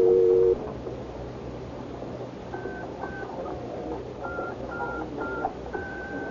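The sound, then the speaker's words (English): A phone number is dialed on the touch-tone keypad of a phone in a phone booth: a quick series of about eight dual-tone beeps, evenly spaced, over a low, steady background hum, after a short tone at the start. “I want to get the number I dialed.”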